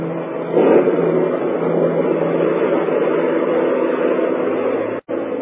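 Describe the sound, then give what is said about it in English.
A steady, loud engine roar drones continuously as a car hurtles at night over a rain-soaked road up a hillside toward a sanitarium, with broad rushing road noise and a brief dropout near the end. “Car lurched and hurtled over the rain-soaked road, tearing wildly through the dark and careening up the hillside toward the stark walls of the sanitarium.”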